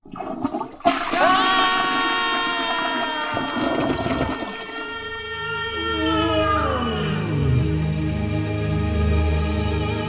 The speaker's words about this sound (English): The water will come out with the flush of the basin and go into the toilet bowl and push us out through the pipes and down into the sewer, where we get added to all of the wastewater that's coming out of the house.